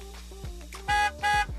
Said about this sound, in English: is that a negative honk? Apparently.